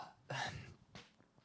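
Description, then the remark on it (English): A single short, loud burp erupts, with a rough, throaty voiced quality, followed by a softer breathy sound and faint quiet noise. No one speaks. “Hold on, I got to burp.”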